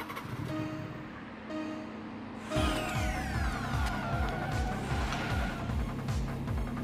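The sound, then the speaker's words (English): A video game race car engine roars to life after a quieter start, then accelerates hard with repeated rising revs and quick gear shifts, loud and continuous, with no talking. “The blue car brings the acceleration down and has slightly better top speed.”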